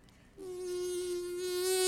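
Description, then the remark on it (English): A steady bee buzz, from a bee that has got indoors, starts abruptly and holds a continuous droning tone, growing slightly louder toward the end. “That's a bee. The bees are getting in somehow.”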